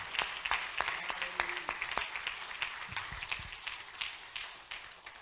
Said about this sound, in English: Clap your hand to the Lord. He's worth.